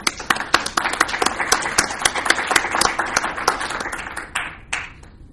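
An audience applauds for several seconds, a dense patter of many hands clapping that gradually thins out, with a few final scattered claps near the end.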